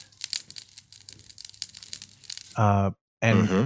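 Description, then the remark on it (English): A campfire crackles and pops with dense, irregular snaps and sharp little cracks for a few seconds, then a voice cuts in with two short, loud bursts. “hearing the hissing and the popping of a fire. Yes, occasionally you tend to get a lot of crackling.”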